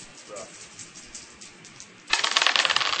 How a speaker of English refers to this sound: That means you roll three dice. So I roll three dice. Okay.